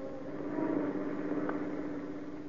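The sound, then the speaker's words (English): A car speeding from an accident scene back to an office drones steadily at a constant pitch, with a low mechanical hum and rushing road noise that never lets up, as if heard from inside the moving vehicle. “And as the car speeds on to its destination, his mood is not of the pleasant.”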